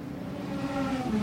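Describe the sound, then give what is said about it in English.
An LMP3 race car, the number 85 JDC Miller Motorsports entry with left rear and suspension damage, hums steadily at low revs as it drives into the pit lane, its droning tone growing slightly louder as it rolls in at a slow pit-lane pace. “Into the pit lane has come the number 85, JDC Miller Motorsports LMP3 entry.”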